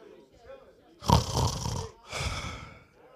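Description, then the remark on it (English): A man imitates snoring with his voice: two drawn-out, raspy snorts, the first louder and rougher, the second slightly softer, with faint murmuring before them. “I like to believe that he was snoring.”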